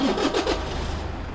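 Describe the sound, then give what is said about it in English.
A car engine cranks with a few quick rhythmic pulses, then settles into a steady low rumble, fairly loud, with no voices; the driver keeps a foot on the brake pedal. “Kat started the engine, but kept her foot on the brake pedal.”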